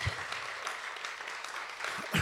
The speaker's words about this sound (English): I love that answer. Y'all should clap for that.